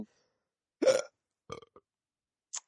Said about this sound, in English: Is it just me, or did that hiccup sound like a burp? Not really. It came through on, like, your microphone and sounded... to me like a burp, because obviously I've got you on monitor to hear you.